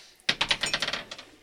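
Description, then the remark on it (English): Dice clatter across a hard tabletop in a quick burst of sharp clicks that bounce and gradually settle, fairly loud, with no talking, rolled for damage during a game. “Okay, roll damage. Okay. I'm just going to steal Roxanne's dice”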